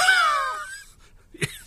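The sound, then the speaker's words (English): A voice imitating someone feeling bad with a cold lets out a wavering, falling groan, then after a brief pause mimics a single short, harsh hacking cough. There are no spoken words. “you get the hacking cough and you think, I've got to have something.”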